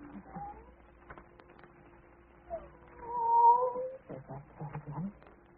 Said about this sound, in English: There's that cat again.